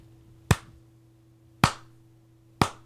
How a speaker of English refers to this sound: Slow clap for Mr. Joe Duvall.